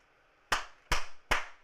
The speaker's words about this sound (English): I got some applause. Hold on, I got some applause in this bitch.